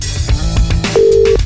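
telephone call ringing

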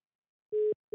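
phone line tone

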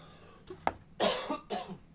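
cough

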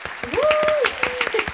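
applause sound effect

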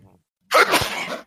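sneeze

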